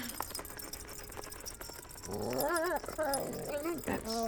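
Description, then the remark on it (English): The family dog, Jimmy, whimpers and lets out high, wavering yips, fairly loud, after a couple of seconds of faint background noise; the excited whining continues in short bursts. “the scratches are all probably from the family dog”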